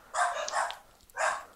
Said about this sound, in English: And the dogs are suddenly excited about that, so I think they just probably heard you mention that there was meat in your sauce. They were like, can we have spaghetti at his house instead of here?